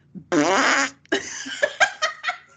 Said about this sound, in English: It's like... It's a fart joke.